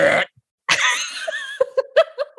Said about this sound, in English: Sorry, I was getting I had a burp that was halfway stuck in my esophagus, and I was like, get out, burp, get out now.